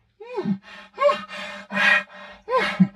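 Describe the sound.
A man's voice imitates a bull elk's chuckle: a steady series of five or six throaty, breathy grunting pulses, each with a brief rising whine, and no other talk.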